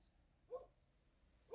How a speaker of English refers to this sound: I'm looking at the dogs, and I can see the dogs barking and looking at something, but I don't see anything.